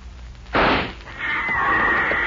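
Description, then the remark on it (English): A single loud rifle shot, fired at a big cat on a rock ledge about 300 yards away, cracks out and rumbles away within about half a second, followed by a steady, thin high-pitched whine that lingers to the end. No one speaks. “Good shot. That's one cat I won't have to worry no more about.”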